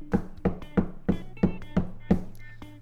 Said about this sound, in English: Yeah, like 4 a.m, I heard knocking on my wall. And okay. I don't live in an apartment. I live in a detached guest house, the one that you once resided in.